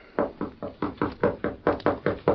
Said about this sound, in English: I'll knock.